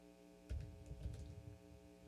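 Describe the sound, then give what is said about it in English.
A handful of soft, quick keyboard clicks as someone types a name on a computer keyboard, tapped in short irregular bursts over a steady low electrical hum, quiet, with no voices. “Let me wait till I finish typing it.”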